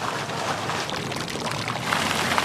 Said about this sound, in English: Bubbling out of the fountains, steaming up the sidewalks, and on tap at 103 degrees in the center of town.